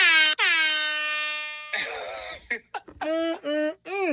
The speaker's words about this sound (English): Let me drop an air horn for the women.